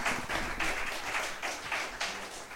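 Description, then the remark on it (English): An audience claps in a dense, steady patter of overlapping handclaps, sustained for a few seconds with slight surges, without any voices. “Clap okay.”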